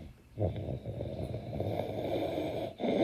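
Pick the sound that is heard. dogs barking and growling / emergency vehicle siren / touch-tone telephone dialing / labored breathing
labored breathing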